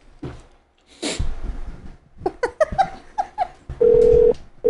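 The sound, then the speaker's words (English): A quick series of short electronic keypad beeps as a phone number is dialed, followed by a steady, loud ringing tone on the line. No one speaks. “Let's do this phone call.”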